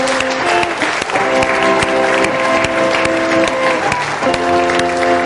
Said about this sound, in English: Can we just give God an applause this morning? Can we just thank Him for who He is? Come on.